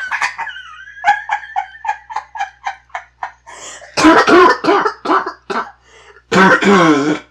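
A run of rapid, breathy laughter breaks into several harsh, close coughs, then one more heavy coughing burst after a short pause, with no talking.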